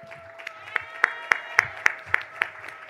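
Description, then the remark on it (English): An audience claps in a steady, even rhythm, about nine sharp claps in quick succession, over a sustained held tone that hums underneath, giving a round of applause for the queen mother of this movement. “A round of applause for the queen mother of this movement.”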